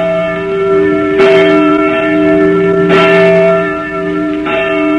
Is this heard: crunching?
no